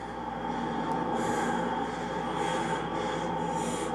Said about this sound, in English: Heavy breathing. He's excited.